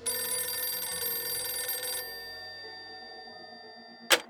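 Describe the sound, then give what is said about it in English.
An old-style home telephone bell rings loudly for about two seconds, its metallic tone lingering and fading, followed by a sharp click near the end, like a handset being picked up. “McElroy got the Clements' home phone number and began a series of harassing calls”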